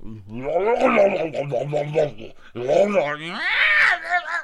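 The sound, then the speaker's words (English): A person vocally imitates a violent animal fight, with strained, wavering growls and yowls in two bursts separated by a brief pause, sounding like a dog tearing apart a shrieking cat in a neighbor's yard, heard through an open window. “And I run to the window, and there's a dog murdering a cat in my neighbor's yard, just tearing this cat apart.”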